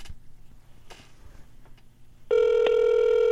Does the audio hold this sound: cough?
no